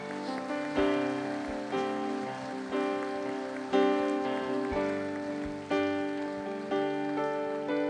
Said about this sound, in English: Everybody clap your hands and thank Jesus for it right now.